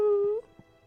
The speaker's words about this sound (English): Is that a wolf? Are there wolves around here? It sounds like a wolf, but a wolf didn't do this.